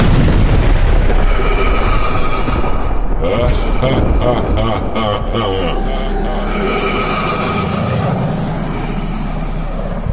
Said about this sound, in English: First, there was nothing. And then, the Big Bang.